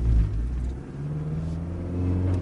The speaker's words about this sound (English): Let's start the car up. Okay, we'll accelerate away gently.